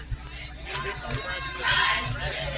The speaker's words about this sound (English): Crowd gives him a nice round of applause.